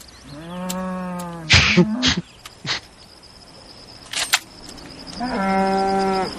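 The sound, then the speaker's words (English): In a scene from the film Napoleon Dynamite, a cow moos twice in long, droning calls as a man is about to shoot it with a shotgun and a school bus pulls up; one moo near the start, one at the end, with several short sharp bursts of noise between and no talking. “I love the school bus pulls up right as he's about to kill the cow.”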